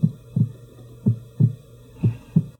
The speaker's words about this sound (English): But with no more time to think, and as the headlights of the approaching vehicle came into sight, Constance's heart began thumping.